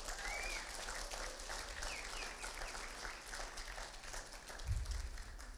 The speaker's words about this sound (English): Awesome. Let's give them a round of applause here.